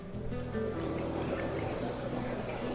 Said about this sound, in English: So now I'm pouring our Malvasia from Colares. These vineyards are grown nearby the ocean, 1 kilometer from the ocean, in the Lisbon region. So it's a special place because the vineyards are ungrafted and the wines are very salty, very mineral.